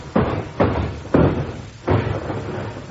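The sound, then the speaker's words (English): A woman falls down cellar steps: four heavy, booming thuds at uneven intervals, loud, each ringing briefly, with no voices. “I think she fell down the cellar steps.”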